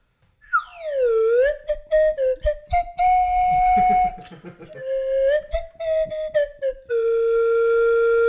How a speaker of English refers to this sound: You really got to put some slide whistle into that song. Oh, just overdub it. One slide whistle to take us out.